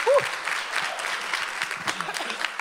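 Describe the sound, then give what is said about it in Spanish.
An audience breaks into steady applause for the Lord, many hands clapping in a dense, crackling wash that holds at an even level throughout, with a brief vocal sound at the very start. “Uy, denle un aplauso al Señor.”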